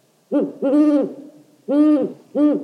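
An owl hoots four times in an uneven rhythm, two close together, a pause, then two more, each call clear, tonal and fairly loud with no voices present.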